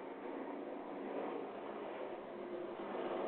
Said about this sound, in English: Listen to this airplane.